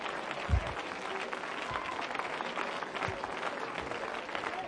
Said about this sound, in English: Somebody, you need to shout yes right now. Clap your hands and just love him for a moment.